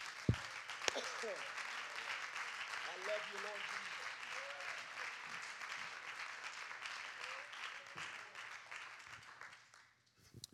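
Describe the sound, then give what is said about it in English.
An audience gives a hand clap of praise, applauding steadily for about ten seconds, a dense wash of many hands clapping, with a few scattered voices calling out beneath it before it fades. “Let's give him a hand clap of praise.”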